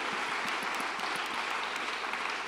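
A crowd applauds steadily, a dense wash of many hands clapping at once with sharp individual claps popping out, sustained at an even, fairly loud level throughout with no talking.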